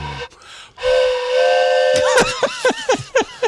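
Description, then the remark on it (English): A distant steam engine whistle blows a long, steady, airy tone over hissing steam, then breaks into a run of short, swooping whistle blasts that rise and fall in pitch. “In the background, yes, I could hear the steam engine.”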